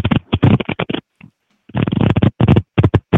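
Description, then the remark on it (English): A deck of cards being cut with one hand and shuffled: bursts of quick, crisp papery flutters and clicks, pausing briefly in the middle, then resuming in a dense, rapid riffle. No voices. “So I cut the deck with one hand and then.”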